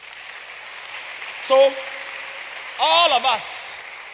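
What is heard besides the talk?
audience clapping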